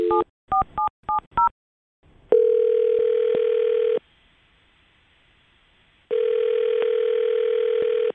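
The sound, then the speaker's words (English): A quick burst of five touch-tone dialing beeps as a host of the radio show Brooke and Jubal in the Morning dials a woman's phone number, then two long, steady electronic ringback tones separated by a pause, clear and alone with no talking. “Well, I'm going to dial her phone number right now and see if we can figure it out, okay?”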